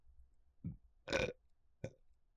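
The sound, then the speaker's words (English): A burp in three quick bursts: a short low gulp, then a longer, louder belch, and a final brief one, with near silence around them and no talking. “I'm gonna burp too, apparently.”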